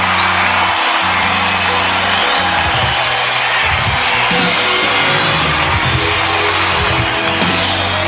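A large crowd erupts in sustained applause with loud cheering, whoops and shouts layered over steady clapping for the whole stretch, staying consistently loud throughout.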